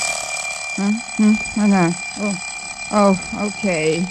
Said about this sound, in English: Darned alarm clock. I wish you'd waited for another minute.